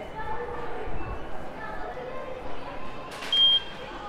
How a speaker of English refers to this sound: That was me going in, setting the alarm off.